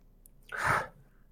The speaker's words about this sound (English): Two seconds. Okay. What's he doing? He's breathing. He's snoring.